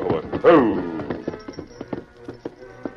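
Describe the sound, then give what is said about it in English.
The hooves of Silver, the Lone Ranger's horse, clop in a loose, uneven rhythm at moderate loudness as he reins up at the approach to a railroad trestle over a creek, with a brief loud tonal burst near the start before the steps continue more sparsely. “As he reached the approach to the trestle, the Lone Ranger reined up for a moment.”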